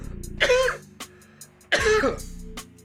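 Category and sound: human body sound, coughing and throat clearing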